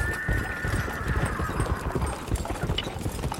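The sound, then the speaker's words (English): A horse named Stooge: hooves clip-clop in a fast, steady clatter throughout, while a high whinny rings out at the start and fades over the first second and a half. No one speaks. “Giddy up, stooge.”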